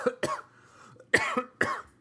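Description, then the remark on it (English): A series of harsh coughs in quick bursts, about four sharp hacks spread over two seconds, with no talking in between. “And then I like to cough all over the poor girl.”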